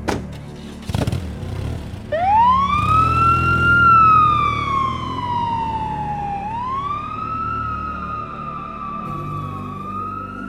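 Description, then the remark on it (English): A police squad car siren winds up after a brief thud, then wails in long rising and falling sweeps, loud over a low engine rumble. “You drive, I'll hop in your squad car.”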